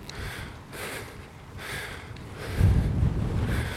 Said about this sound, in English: As you can probably tell from the voice recording, a very windy climb I'm on.